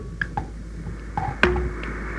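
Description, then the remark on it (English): Several short electronic beeps from fingers pressing phone buttons to dial a call, irregularly spaced, with one slightly longer tone near the end, moderately quiet, with no talking. “With my fingers pushing the buttons on the phone.”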